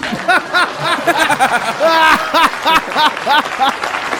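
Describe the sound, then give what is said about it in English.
An audience breaks into a burst of laughter and chuckling, with scattered clapping mixed in, lively and fairly loud throughout. “Please clap.”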